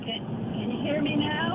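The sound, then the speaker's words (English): A steady, loud rush of wind and road noise from inside an old car driving on the highway with its windows up, constant throughout, with a faint muffled voice buried underneath. “You sound like you're in a wind tunnel. I'm sorry, I'm driving on the highway.”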